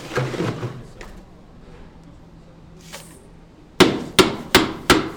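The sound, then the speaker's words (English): Four hard, evenly spaced mallet blows crack into ice near the end, loud, following a stretch of quieter scraping and handling noise, as two workers at a Brazilian barbecue restaurant hammer ice with a mallet. “Jesus Mayo and Andres Batista are hammering ice with a mallet.”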